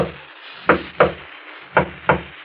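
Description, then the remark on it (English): A soft, discreet knock on the front door of a shop: two quick raps, a pause, then two more, muffled, over a faint low background hum. “There's a discreet knock on the door at the front of the shop.”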